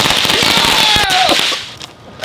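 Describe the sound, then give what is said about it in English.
A rapid string of small Black Cat brand firecrackers pops and crackles in quick succession for over a second, loud, then trails off into quieter background noise. “Did you hear those black cats, dude?”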